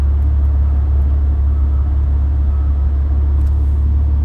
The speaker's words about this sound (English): Truck next to me.